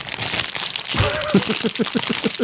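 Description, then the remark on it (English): The buttons and switch of a fidget toy, with different things on each side, are pressed by thumb and fingers, clicking in a quick, steady run of small taps over a faint rustly hiss, picking up after a brief pause. “there's just different stuff on each side for my thumb to do or my fingers to press on”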